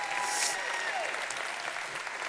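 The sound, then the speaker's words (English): A crowd applauds steadily for a couple of seconds for an absent high school graduate being recognized, a dense patter of clapping hands at moderate volume with a faint whistle-like tone drifting through the start. “If you would, please give him a hand clap, even though he's not here.”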